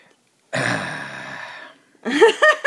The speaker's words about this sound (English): Also, I yawned, which I think also sums it up.